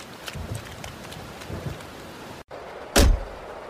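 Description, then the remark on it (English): Steady rain hisses throughout, broken by a brief hush, then a single loud thud as the door of an arriving transport vehicle is opened and slammed shut, followed by the rain continuing. “Let me go first and I'll get the door for you.”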